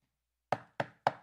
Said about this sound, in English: So verse 13, Peter's knocking at the door.